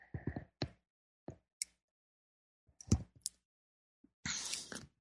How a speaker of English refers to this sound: So check this out. I can take a sip of my tea here.